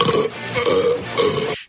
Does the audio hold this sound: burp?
yes